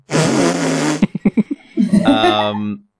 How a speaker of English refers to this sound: to summarise everyone's year, I think that fart noise is appropriate.